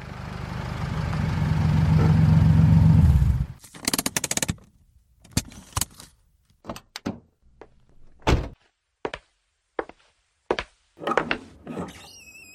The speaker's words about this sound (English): I trudged to my car and drove home.